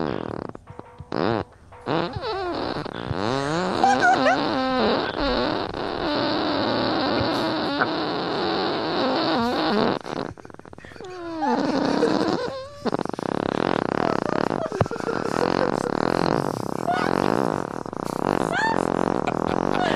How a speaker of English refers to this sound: and I'm from Northland, and I can fart for 34 seconds.